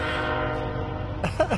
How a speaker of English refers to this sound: Can you hear the train?